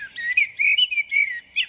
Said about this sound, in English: but I whistled back, and the blackbird whistled back to me. We had a conversation.